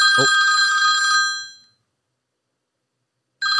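A loud, bright telephone bell rings for about a second and a half, then fades into silence before a second ring begins near the end.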